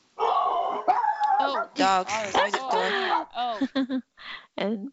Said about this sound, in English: Puppies. Yeah, the doggies like that idea.